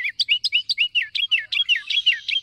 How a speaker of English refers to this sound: Sometimes it seems that the smaller the bird, the bigger the voice. Some of the noisiest species in the Americas are the wrens, their loud chants and trills all out of proportion to the slightness of those slender bodies.